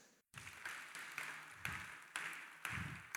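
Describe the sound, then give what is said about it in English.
A crowd applauds steadily, a dense wash of clapping with regular stronger beats about every half second, as if the audience falls into rhythm. No voices come through over it. “Are you clapping or you are like you are doing something?”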